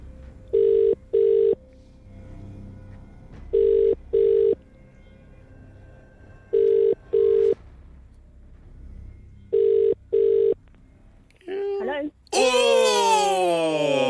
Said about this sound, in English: Remember, you need to answer the phone within 5 rings and know today's featured artist. Let's call the person who's been randomly selected. Here we go.